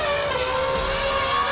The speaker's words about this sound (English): Oh my God, this is the most thrilling car chase I've ever seen or been in!